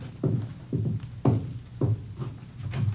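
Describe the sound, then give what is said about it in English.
A steady series of about six firm knocks on a back door, evenly spaced roughly half a second apart, moderately loud, with no voices. “Somebody at your back door.”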